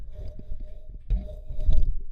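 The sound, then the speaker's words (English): A cat scrapes its rear against a microphone, making muffled, low rustling and thumping bursts that swell twice, louder toward the end, with no talking. “that was my cat's ass scraping against the microphone.”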